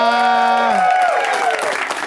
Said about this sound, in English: You guys know when to clap. It's awesome.